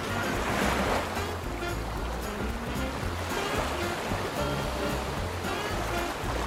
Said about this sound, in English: it's waves on the beach.